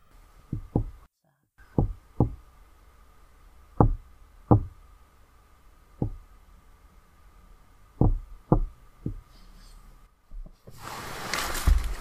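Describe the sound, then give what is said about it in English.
A series of sharp, hollow knocks in uneven short and long groupings, tapping out the word "dies" in Morse code, over a faint steady hum, ending in a burst of hiss. “We then hear a series of knocks that, when translated from Morse code, ominously mean, dies.”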